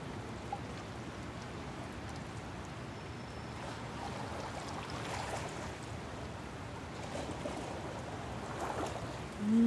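Steady outdoor water ambience: a soft, continuous wash of small waves lapping, with faint splashes rising and falling. No one speaks, and a brief tone creeps in at the very end.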